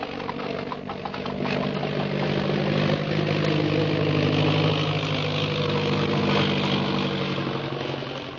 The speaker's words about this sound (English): Speak of flying, listen. You hear an airplane motor? Yes. There is airplane.